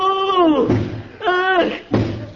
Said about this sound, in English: Ooh. Hey, mister, what you doing? What you banging your head against the wall for?